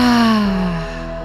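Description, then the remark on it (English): A single loud breath pushed out through the mouth during a guided breathing exercise, voiced like a deep sigh with a tone that slides downward and fades over about a second, with no talking. “And exhale, release with the breath out.”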